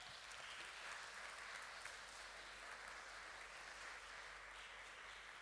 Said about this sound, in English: Let's give these guys a round of applause as they come up.